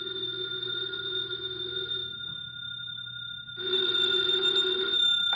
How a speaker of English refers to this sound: Later that day, the phone in the Lawrence house on Berry Hill Lane began to jingle. And this time it was no phony.